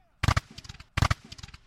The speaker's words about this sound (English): Robert's exhausted, defeated men fire a 50-round salute to honor the Stars and Stripes.